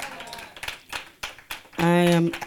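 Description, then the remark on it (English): Scattered hand claps of praise to God from an audience, given for the word of God, ring out in sharp bursts, followed by a loud, sustained tonal note like a raised voice. “Can we give God a hand clap of praise?”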